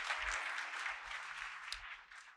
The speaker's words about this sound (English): Come on, put your hands together and give the Lord a hand clap of praise.